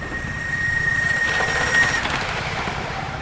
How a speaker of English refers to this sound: But things people care about come in all shapes and sizes. For instance, there are trains. And then there are trains.